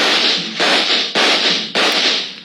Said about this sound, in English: He took a full volley of shots from three police pistols square in the chest.